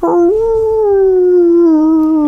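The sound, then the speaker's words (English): A dog lets out one long, loud howl, holding a steady mournful tone that sags slightly in pitch toward the end, with no voices or other sounds. “Put your dog out”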